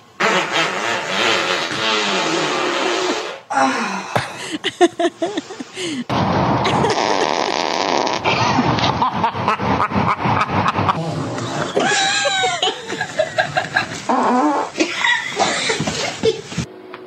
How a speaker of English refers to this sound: Wow. I like that there's a full range of farts.